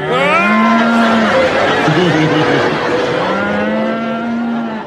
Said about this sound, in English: After which he is, of course, stampeded by a herd of cows.